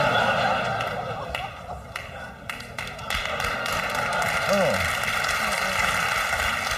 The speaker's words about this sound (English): Booing into applause, my favorite reaction.